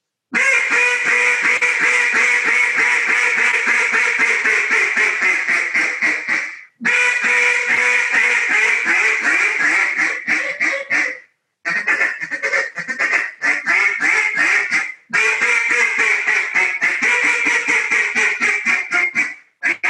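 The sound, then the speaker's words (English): A Paradox duck call, tuned fairly light and slightly overblown, blown in loud, rapid, continuous quacking runs with brief pauses between sequences. No talking. “Making the Best Duck Call”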